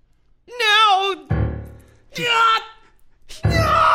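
A man clutching his head with both hands cries out in agony in several loud bursts, wavering howls alternating with rough, strained groans, with short breaks between each anguished outburst.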